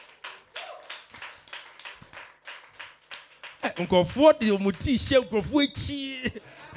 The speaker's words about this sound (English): Clap for Jesus.